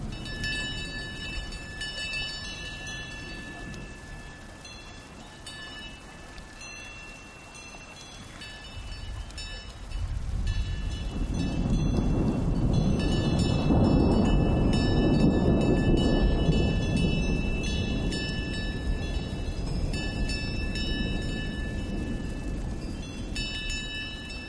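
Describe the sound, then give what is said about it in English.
Cowbells on a group of cows high on an alpine mountaintop in the Swiss Alps near the town of Les Moulins clang in the breeze in an irregular, overlapping jangle while a deep rumble of an approaching thunderstorm swells up about halfway through and keeps rolling underneath. No one speaks. “We leave you this week high on an alpine mountaintop where a group of cows, their bells clanging in the breeze, seek refuge from an approaching storm.”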